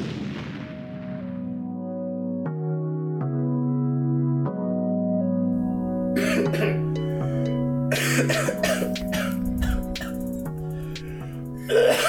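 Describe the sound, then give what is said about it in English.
A sustained, droning tonal background plays alone at first, then a loud fit of harsh coughing erupts midway in a run of rapid, repeated bursts that continue to the end. “I had a cough. Mm-hmm. And I got it out.”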